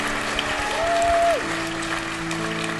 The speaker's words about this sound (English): That's amazing. Yeah, we can applaud God's good work.